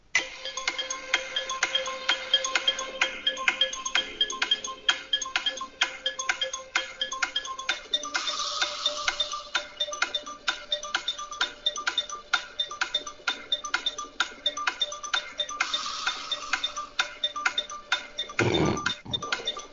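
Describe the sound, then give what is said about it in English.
A 30-second game timer ticks steadily and quickly for the whole stretch, its regular bright clicks sitting over a sustained synthetic tone, with a low thump near the end and no talking. “You got 30 seconds when you hear the timer.”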